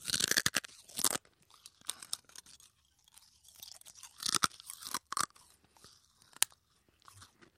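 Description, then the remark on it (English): Broken glass being chewed and crunched: sharp, brittle bursts of crackling come in irregular clusters, some loud and snapping, others softer grinding between them, with no voices. “So I'm just going to stick to the broken glass here.”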